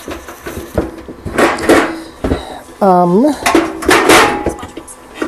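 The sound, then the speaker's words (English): Dishes, pots and pans clatter and clank as someone rummages through a kitchen cupboard looking for a mixing bowl, with scattered bangs and scrapes and a brief squeaky rubbing sound midway, fairly loud. “Now let's see if I can find the other mixing bowl that I was wanting. Still need plenty of pots and pans”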